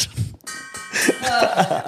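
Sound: bell ringing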